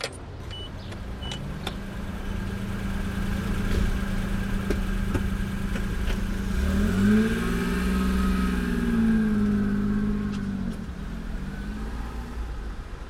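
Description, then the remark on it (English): A car engine runs steadily as the car drives away from a shop, with a low hum that rises and shifts in pitch midway as the vehicle accelerates, plus faint clicks and rattles inside the cabin. No one speaks. “As we left the shop, she got in my car and started giving me directions.”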